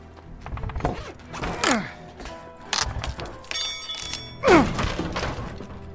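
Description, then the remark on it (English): A crowbar pries something open: dull thunks and knocks, a brief metallic ring, and creaking, groaning strains as the material gives way, with no talking. “Crowbar.”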